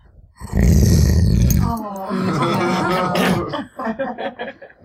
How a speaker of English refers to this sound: What you can't see here, in fact, is us trying to make a very large Iron Age dog announce her presence.